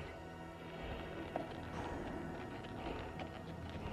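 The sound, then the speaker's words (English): A horse with a rider trots steadily toward a village cemetery, the hooves' clip-clop soft and somewhat muffled within a dense, continuous outdoor background, with no one speaking. “Horse and rider trot towards the village cemetery.”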